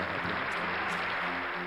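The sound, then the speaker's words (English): An applause sound effect: a steady burst of crowd applause, dense crackling clapping at an even loudness throughout, with no voices on top. “We'll throw some applause in there.”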